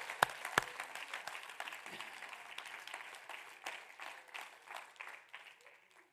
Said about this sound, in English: Somebody clap your hands.